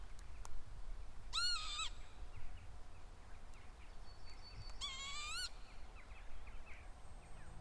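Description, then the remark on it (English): Two wheezy, rising calls of a northern lapwing, a few seconds apart, over a soft, low outdoor rumble. No one speaks. “And on one lucky day, this unique bird call that I think is a northern lapwing.”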